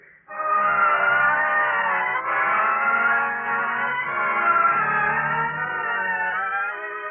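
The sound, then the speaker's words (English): A car roars with a loud, steady, whining engine or tire squeal that holds for several seconds without letting up. Nobody speaks. “Let's sit in the car for a minute.”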